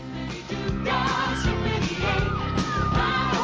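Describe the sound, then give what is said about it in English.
A loud, upbeat song from the Splash Mountain theme park ride plays continuously with heavy bass and layered melody, while excited screams and yells from a crowd of riders, including kids, rise faintly in the background. “It's the bop version because you got to have the screams in the background.”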